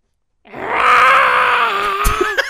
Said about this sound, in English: A passerby yells at the rooster.